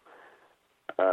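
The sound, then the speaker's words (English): A mobile phone's electronic ringtone chirps out for an incoming call, a soft tonal burst followed by a short pause and then a louder, harmonically rich tone, without any talk. “I just rejected that, and let me turn that down. I guess I'm a little scatterbrained. I thought I had turned that phone down.”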